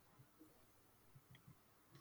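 Soft computer mouse clicks, about six of them spaced irregularly over two seconds, quiet against a faint background hiss, as someone clicks around the state of Michigan voting website, with no one talking.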